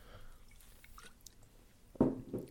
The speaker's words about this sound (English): Hold on, let me sip this beer.